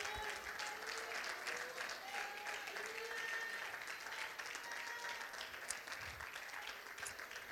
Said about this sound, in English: Clap your hands. Clap your hands, all ye people.